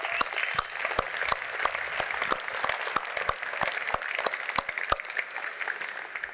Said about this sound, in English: I want to also congratulate the other 2 finalists, the Ritchie Group and Columbus Pacific, because you guys were absolutely deserving of the recognition. So another round of applause, please, for all 3 finalists.